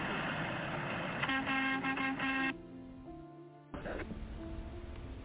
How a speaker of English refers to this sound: A honk for my 5-year-old son. He's a little shy. He just got home from school, and he's very excited to watch the truckers come through. Renfrew, Ontario, can I get a honk for my 5-year-old? Thank you.